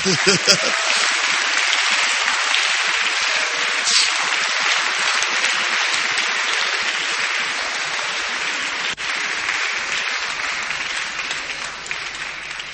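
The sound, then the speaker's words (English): A church audience applauds the pastors' wives steadily for about thirteen seconds, a dense, loud, even wash of many hands clapping without pause, with faint voices mixed underneath. “Clap for the pastor's wives.”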